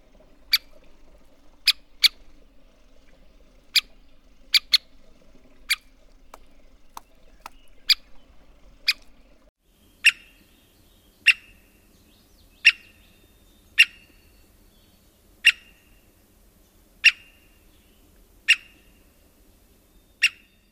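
An American three-toed woodpecker gives a series of short, sharp, loud pik calls, repeated every second or so; quick and uneven at first, then steadier, with no other sounds.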